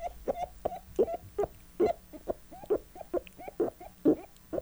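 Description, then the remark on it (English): A toad calls in a rapid series of short, mid-pitched croaks, roughly three per second in a slightly uneven rhythm, fairly loud with no talking. “That sounds like a toad, doesn't it?”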